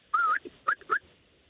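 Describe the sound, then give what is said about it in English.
A family call whistle from Geelong, used for the kids and the dogs: one long, slightly wavering note that lifts at its end, then two short, sharp whistled notes in quick succession, clear and fairly loud, with no talking. “Oh, two short sharps at the end. Oh, it's a multiple. It's like Morse code.”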